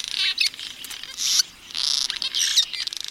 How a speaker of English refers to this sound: Cliff swallows consume hordes of flying insects. These birds have only 5 different calls, but one, a unique squeak call, tells others that they've found food.